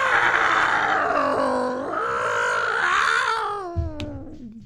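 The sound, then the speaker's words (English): A cat in heat yowls outdoors, its cry echoing off houses, in one long, loud, wavering wail, its pitch sliding up and down like a siren before breaking off with a short rough burst and fading. “I mean, is that the horny cat siren that just went off there?”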